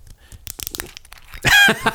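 A run of small crackling clicks, then a louder hissing burst with a brief whistling edge and a final short snap as a twist-off bottle cap is turned and opened.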